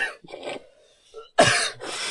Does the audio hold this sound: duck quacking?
no